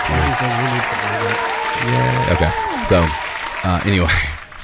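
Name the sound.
applause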